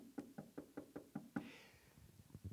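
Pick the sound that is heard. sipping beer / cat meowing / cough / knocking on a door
knocking on a door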